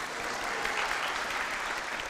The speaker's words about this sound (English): No. Don't clap for me.